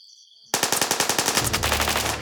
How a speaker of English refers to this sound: He pointed his gun at the dark woods and started shooting. Within seconds, bullets fired back at him from the woods.